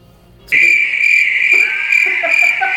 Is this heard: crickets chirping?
yes